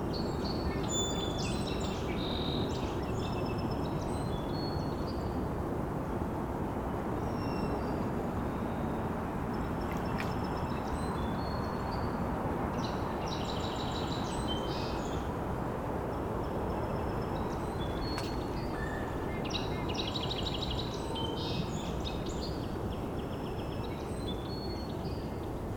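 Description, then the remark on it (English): Faint, high ticking flight calls come in short scattered bursts over a steady, loud rushing noise, repeating on and off throughout. “Hearing a faint ticking call flying over. Wondering if maybe a crossbill from the type of call I was hearing.”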